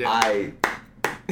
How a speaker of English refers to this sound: Clap hands, yes.